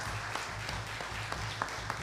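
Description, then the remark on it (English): A crowd applauding together, a steady wash of many hands clapping with a few sharper claps standing out, reverberant. “So we give thanks for that as well. Yeah, clap.”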